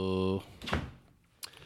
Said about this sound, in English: Oh, the door just opened by a ghost.